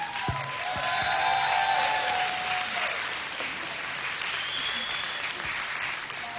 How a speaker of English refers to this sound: Hey, I give those guys a round of applause. Hey, that's a hard act to follow.